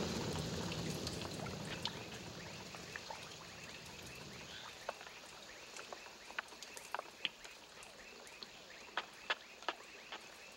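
Water drips irregularly after rain in a jungle, sharp little plinks and taps scattered over a soft, wet background hiss that is heavier at first and then thins out, leaving the drops more distinct.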